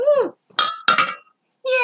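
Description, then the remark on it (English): Two quick metallic clinks ring out close together, metal glasses of citrusy wine tapped in a toast, with short bits of cheerful women's voices just before and after. “And we're back to our typical glasses that are made of metal. Yes. You could hear that.”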